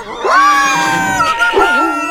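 Rocket, a 44-pound German Pinscher at the Royal Woods Animal Shelter, lets out a loud, drawn-out howl that wavers and bends in pitch, dipping briefly before rising again into a second sustained cry, with no talking.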